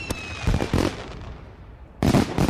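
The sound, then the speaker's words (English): Celebratory fireworks launching and going off in a quick series of sharp, booming bursts with crackling tails, a thin rising whistle early on, and a loud double blast near the end. “Or launching those celebratory fireworks.”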